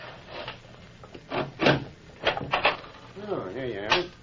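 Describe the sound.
A wooden door is unlatched and swung open, with a few knocking clunks and rattles, followed by a brief voice at the end.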